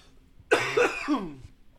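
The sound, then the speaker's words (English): A single harsh, raspy cough bursts out, trailing into a rough throaty rattle for about a second before quiet returns. “You've got the coughs over there.”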